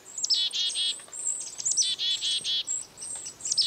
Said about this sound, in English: A closer look and listen reveal that this foraging flock includes several species of birds, chickadees, kinglets, and even a downy woodpecker. Many bird species eat alone, so you might wonder why these birds have chosen to dine together.